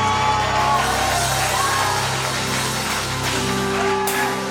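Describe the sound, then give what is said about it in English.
A church audience claps and cheers for Jesus after an evening sermon in a dense, steady wave of applause with scattered shouts, staying loud for several seconds while sustained musical tones hum underneath. “Give Jesus the biggest hand clap.”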